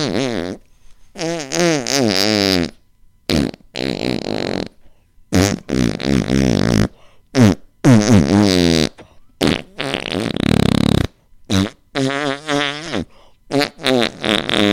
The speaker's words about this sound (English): This is what it sounds like when doves fart.